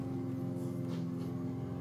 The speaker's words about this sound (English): Can you hear the helicopter? Yeah. The helicopter very close overhead. Yeah.